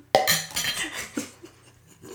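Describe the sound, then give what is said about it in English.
Glasses clink together several times in a toast, a few bright, ringing taps scattered irregularly, moderately loud, with soft clatter between them and no talking. “Cheers. Oh, cheers. Oh, cheers. Cheers.”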